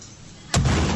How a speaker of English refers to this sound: Oh my god! A hydrogen explosion.